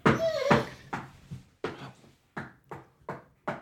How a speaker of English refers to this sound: I thought that was a tail. Yeah, it's a tail. It is a tail banging back and forth, and a dog whining.